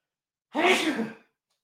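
A single fairly loud sneeze, bursting out abruptly and trailing off in under a second, with silence before and after.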